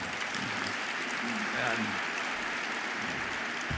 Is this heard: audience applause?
yes